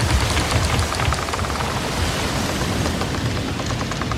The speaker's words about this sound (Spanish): Lo acompañaba una lluvia tan violenta y abundante que quedamos rápidamente inundados, nosotros y nuestros fardos de mercancías.